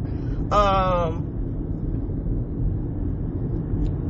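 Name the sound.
car interior noise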